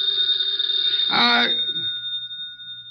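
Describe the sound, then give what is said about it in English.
A telephone bell rings steadily for the whole stretch, its bright metallic tone sustained throughout, with a brief murmur of a voice breaking in near the middle. “The phone.”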